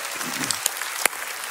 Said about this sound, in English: Come on, clap your hands for our student ministries.